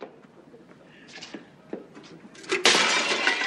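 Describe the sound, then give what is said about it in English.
A few faint clinks and knocks build up to a loud, close crash of a glass bowl shattering, its bright, hissing clatter lingering to the end. “Florida smashes the ball and goes, damn, damn, damn.”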